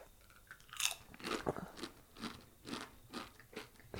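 food or drink, loud crunching

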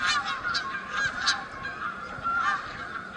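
bird, canada geese honking

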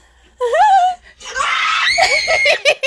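human body sound, loud scream

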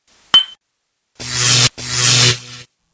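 household object, glasses clinking

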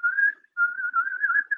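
human body sound, person whistling a tune

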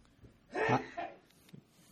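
human body sound, sneeze

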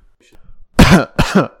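human body sound, throat clearing

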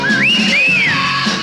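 human body sound, loud human whistle

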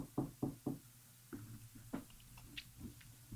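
household object, knock

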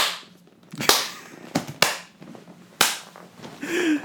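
human body sound, hand clapping

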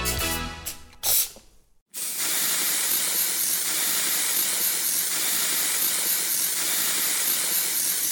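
household object, aerosol spray can hissing

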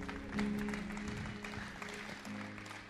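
crowd, audience applause

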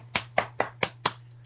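human body sound, hand clapping

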